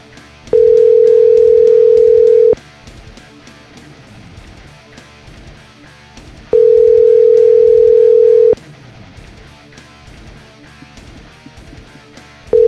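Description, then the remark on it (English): A phone ringback tone sounds as the call goes unanswered: two long, steady electronic rings about two seconds each, separated by long pauses, with a third just beginning. Loud, no talking. “There's no way he's gonna get on the phone here. That's too many rings.”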